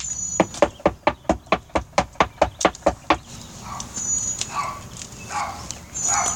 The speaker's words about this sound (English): In the recording … made of the encounter, we can hear him knocking on the actual door.